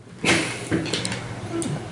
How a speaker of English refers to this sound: Door's unlocked. Nobody seems to be paying attention. Door's open? Door's open.